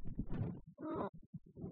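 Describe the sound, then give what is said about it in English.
A cat pawing at the microphone: a quick run of muffled bumps and scratchy, rustling thuds in an uneven rhythm, fairly loud, with no voices. “Yeah, that's him pawing the microphone.”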